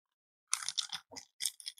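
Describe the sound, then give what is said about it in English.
A glass is shaken in a quick run of crisp, rattling bursts, about five in under two seconds, bright and clattery, with no voices over it. “Oh, that was so ASMR that you were like shaking the glass with the, we should do that on the YouTube channel, by the way”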